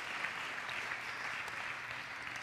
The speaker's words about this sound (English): I love you all. Thank you for the time. Yeah, you may clap.